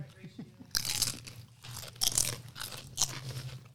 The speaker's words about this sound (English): I feel like I'm crunching really loud. It's good, though.